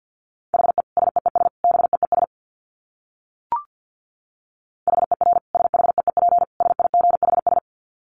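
Rapid Morse code beeps at 50 words per minute on one steady mid-high pitch, sent very fast in two bursts of short and long tones, separated by a pause broken by a single brief click.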